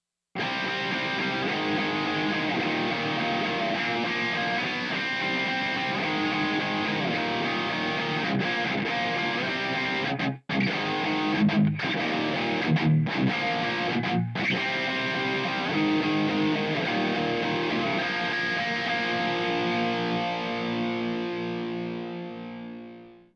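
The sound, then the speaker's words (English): Heavily distorted electric guitar plays ringing power chords with brief stops, then busier single-note fretwork, all at a steady, evenly compressed volume before a final chord rings out and fades. “The goal here is to get a more even volume between massive, ringing power chords and the more intricate fretwork that may have a little less intensity from our picking hand.”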